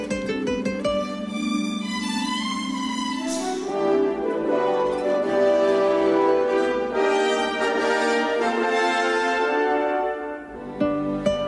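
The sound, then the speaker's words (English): A gentle guitar melody, the DreamWorks film studio logo theme, plays alone with warm, sustained chords over a soft low backing, swelling slightly midway and fading near the end. “Ooh, the guitar. I know the guitar.”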